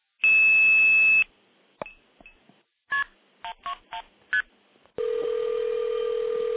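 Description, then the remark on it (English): A loud tone burst, then a quick run of seven or eight touch-tone dialing beeps, followed by a steady ringback tone on the line as the call rings a local phone in a basement telephone switch room. No voices are heard. “And you can hear it ringing my my phone.”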